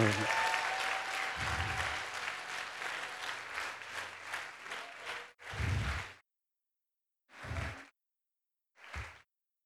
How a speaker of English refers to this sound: Would you clap your hands loud